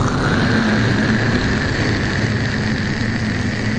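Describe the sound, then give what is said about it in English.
A spaceship's stage 2 rocket engine is fired and roars in a loud, steady blast, a dense rumbling hiss with a low droning hum running through it, holding constant without pause for several seconds. “When I say, go ahead and fire them. Go ahead right now. Fire engine 2.”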